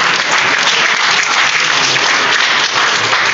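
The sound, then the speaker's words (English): An audience applauds steadily, a dense, even patter of clapping that stays loud and sustained for a few seconds without any talking over it. “You can just clap for that.”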